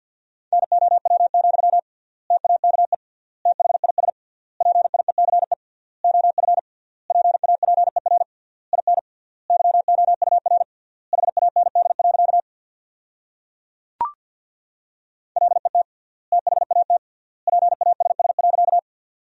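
Very fast Morse code practice tones at 50 words per minute, sending sentences from the top 400 words with triple word spacing: a steady mid-pitched beep keyed into rapid bursts, grouped into word-length runs with short pauses between them, plus one brief click and a silent gap near the end.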